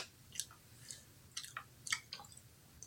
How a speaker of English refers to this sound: I think my chewing is more vulgar than yours. You're doing a good job.